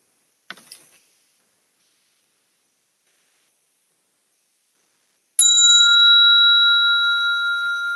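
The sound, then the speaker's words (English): After a faint brief tap and several seconds of silence, a bell is struck once, loudly, to close a Zen practice session, its bright sustained tone ringing on and slowly fading. “Do I use a bell?”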